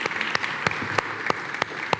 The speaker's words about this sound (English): Can we give her a round of applause, please?